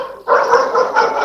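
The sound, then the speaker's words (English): A dog barks in a loud, sustained burst that starts abruptly and runs on without clear pauses between the barks. No one is talking. “Is that a dog I can hear in the background?”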